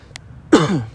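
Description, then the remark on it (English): A single loud cough bursts out with a rough, throaty tail, preceded by a faint click; no one speaks. “I cough.”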